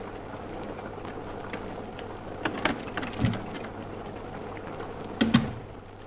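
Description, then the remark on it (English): Steady rain amid slush, hissing in a continuous wash, with a few louder drips and splashes around the middle and near the end. No voices. “At last, the cottage. 2 miles in rain and slush and worn out.”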